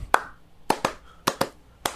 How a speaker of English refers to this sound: All those claps and stomp claps, it's so twee.